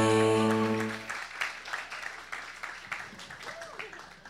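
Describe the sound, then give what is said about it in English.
An audience at a live event at the W Hotel, Times Square, breaks into applause for guest Laura Dreyfus, a dense, steady patter of many hands clapping that carries on after a short sustained musical tone fades out at the start. “And a big round of applause for my magnificent guest, Laura Dreyfus.”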